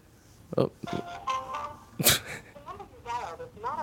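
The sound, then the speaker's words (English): A failed phone call tone heard when calling a number: short steady electronic beeps stepping in pitch, surrounded by harsh bursts of noise and a warbling, voice-like sound that follows, all fairly loud. “Yeah, see, every time we try to call this number, this is what we get.”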